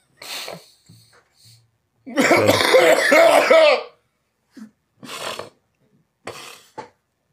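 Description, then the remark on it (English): A harsh coughing fit: a short cough, then a long, rasping hacking spell, then two more separate coughs with brief silences between them. No talking. “My back hurts from coughing.”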